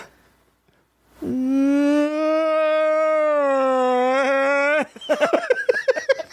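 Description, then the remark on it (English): A person's voice imitates a guttural cryptid howl, holding one long, loud, steady moaning tone for about three seconds that wavers near the end, then breaks into choppy laughter. “Oh, guttural? Was it? Crying, moaning, howling.”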